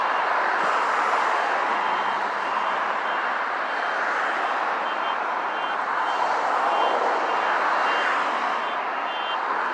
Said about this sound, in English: Is that the alarm to my life? Is that an alarm for me?